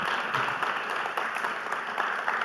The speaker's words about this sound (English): So if we could give them a round of applause, that's quite something.